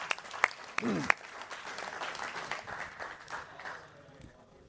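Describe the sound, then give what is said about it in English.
A crowd applauds with dense, continuous clapping, a few sharp louder claps standing out early on, and the applause gradually thins and fades toward the end. “Give you guys a hand.”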